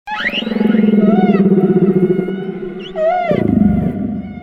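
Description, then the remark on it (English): Humpback whale song: long, sweeping moans and rising whoops layered with higher squeals, loud and continuous, with a deep groaning shift near the end and no voices. “humpback whales are the singing stars of the sea”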